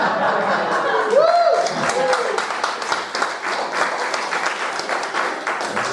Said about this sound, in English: Most unusual round of applause of the evening, but look at the craftsmanship.